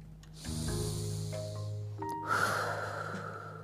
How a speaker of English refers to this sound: Breathe in slowly, then breathe out slowly. Count each breath until you finish all 10. In through your nose, out through your mouth.